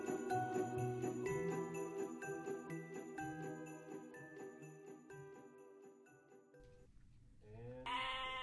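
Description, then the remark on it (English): A group of frightened goats, just out of an elevator into an apartment building hallway, bleats loudly, their wavering cries overlapping in a continuous agitated chorus, with a sharper, higher bleat rising near the end. No one speaks. “Oh, what's the matter with them now? They're frightened. Now listen, goats.”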